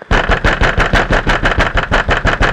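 vehicle, car engine running

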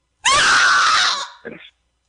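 human body sound, person screaming

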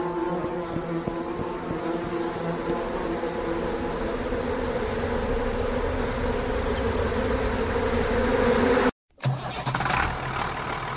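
insect, buzzing bee

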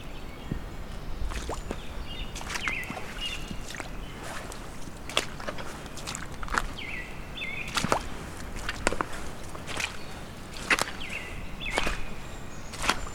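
bird, american robin singing

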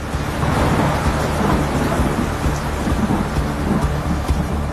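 nature, thunderstorm with heavy rain

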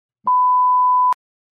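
sound effect, censor bleep

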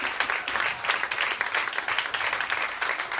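crowd, round of applause

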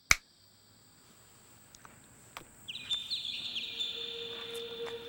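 bird, birds chirping

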